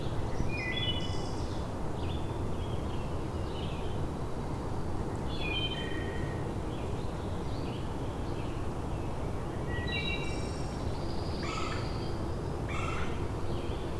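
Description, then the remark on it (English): A red-bellied woodpecker calls outdoors, its short rolling notes repeating every few seconds over a steady low rumble of wind or traffic. “There's a red-bellied woodpecker.”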